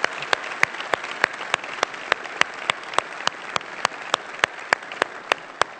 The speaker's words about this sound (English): Let's give them a round of applause today, guys.